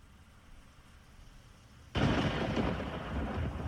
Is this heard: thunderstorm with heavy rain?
yes